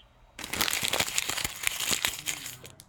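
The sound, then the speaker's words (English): A bag of crinkle-cut kettle cooked chips crinkles and rustles for a few seconds, a dense run of sharp crackling bursts with no one speaking. “I went back to my kettle cooked chips.”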